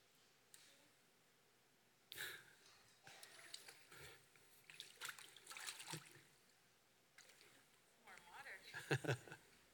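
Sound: water trickling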